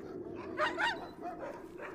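Several working huskies, chained up to wooden dog houses by a cabin in the woods, bark and yip in a noisy overlapping chorus, a couple of sharper barks standing out near the middle, with a steady low rumble of background noise throughout.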